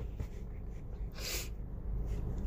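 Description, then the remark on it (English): A single short cough bursts out midway through, a brief breathy rasp against a low background hum, with no talking around it. “I gotta pause this to cough, okay?”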